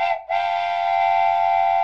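A loud, sustained train whistle blast with rich layered harmonics, briefly dipping near the start before holding steady and strong to the end, heard alone without any talking.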